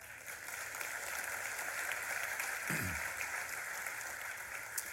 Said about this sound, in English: It's okay to applaud for that.